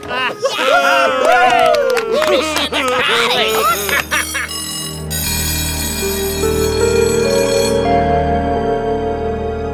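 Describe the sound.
Excited crowd voices shouting over each other, then a malfunctioning school bell takes over with a loud, continuous ringing tone that shifts pitch in steady stages and keeps sounding to the end.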